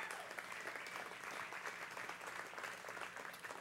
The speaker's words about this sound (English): I'm going to ask you to give another round of applause to our 2 guest panelists tonight,